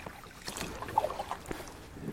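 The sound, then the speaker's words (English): A single kayak paddle stroke splashes through still water in the shade, in a swamp connected to a river: a soft watery swish with a few small drips, set against a faint breezy hiss. “So let me go one more stroke.”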